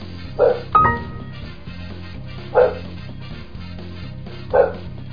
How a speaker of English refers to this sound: It's just the dog barking. I hope you can hear that!